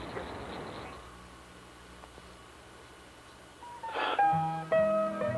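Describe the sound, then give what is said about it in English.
A green frog calls twice near the end with a loud, twangy gulp like a plucked loose banjo string, each note dropping quickly after a sharp attack over a low, steady background hum. “We like to compare the voice of a green frog to the sound made by a loose banjo string.”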